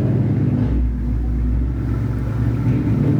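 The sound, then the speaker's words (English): A car engine revs loudly outside in Hollywood, a deep, steady rumble with rising and falling throttle that fills the whole stretch, with no talking over it. “I think that's a brand new car because that didn't used to do that.”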